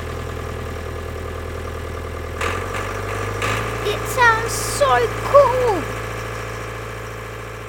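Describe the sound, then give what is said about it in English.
A tractor engine is started on a farm and rumbles at a steady low idle, its tone shifting as it kicks up a notch partway through, while a voice speaks excitedly over the constant chugging. “William started up the tractor. Listen to that noise!”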